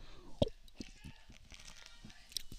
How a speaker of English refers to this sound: As I take a sip of that beer, because that's what the Jets make you do. They make you fucking drink.